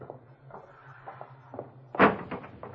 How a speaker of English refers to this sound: You go out first, Pop, and open the street door.